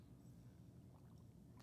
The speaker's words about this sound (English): Is scary. Sounds like bubbles at first. I told you. Yeah, it's scary. Bubbles.